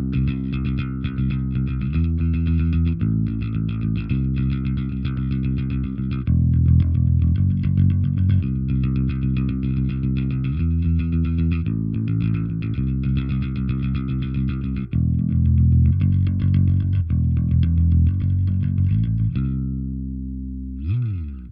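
Electric bass picked in a steady stream of notes with a light gritty distortion, playing a shifting riff loud for about twenty seconds before ringing out at the end.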